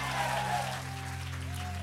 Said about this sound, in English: Come on, give him a hand clap if you're excited about that today. Come on, give him a real hand clap and a shout. Hey!